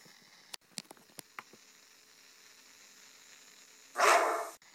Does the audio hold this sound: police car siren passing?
no